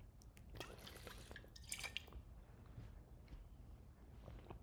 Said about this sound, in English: Let me drink some water.